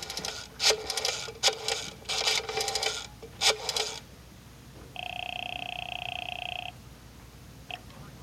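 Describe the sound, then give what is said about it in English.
A telephone number is dialed at FBI field headquarters in the Metropolitan Center, a quick run of clicking, ratcheting bursts, then after a pause a steady ringing tone sounds for nearly two seconds, followed by a brief chirp, as a call is placed to the Provost Marshal's office. “Special Agent Jim Taylor is making a phone call.”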